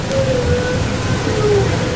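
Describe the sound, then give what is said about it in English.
Underwater recording of orca whale calls in the Salish Sea: thin, drawn-out tonal whistles gliding slightly in pitch, layered over a steady hiss of rushing water noise, with no talking. “You're listening to the vocalizations of orca whales in the waters of our Salish Sea.”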